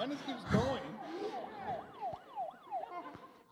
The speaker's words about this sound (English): You guys are breaking my buzzers. I'm tempted to just call on them because you broke my buzzer.